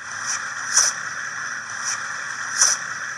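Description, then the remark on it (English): A river otter's blow call: a few short, breathy puffs of air repeated at uneven intervals, hissy and noisy over a steady background hum, with no voices. “Well, I've heard otters make this sound when I was out paddling on a river.”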